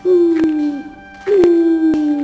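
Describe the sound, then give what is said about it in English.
Owls hooting in the distance in a dark forest: two long, low, slightly falling hoots separated by a short pause, sounding fairly clear, with faint clicks in the background and no talking. “Owls hooted in the distance.”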